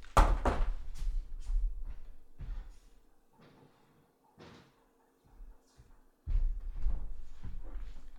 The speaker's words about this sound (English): Dude, there's so many fucking bugs out right now. I'm about to go close my window because I don't have a screen door.